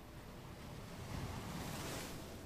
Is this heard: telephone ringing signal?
no